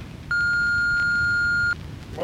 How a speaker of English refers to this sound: And I think somehow there's call waiting on this phone box.